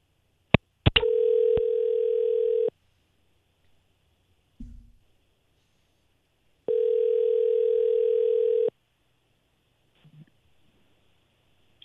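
A telephone ringback tone heard through the line as a call is placed to a woman: two long, steady electronic rings separated by a few seconds of silence, preceded by sharp clicks as the call connects.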